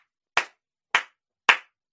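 Three sharp, single hand claps ring out at a slow, even pace, each crisp with a quick decay, and no voices around them.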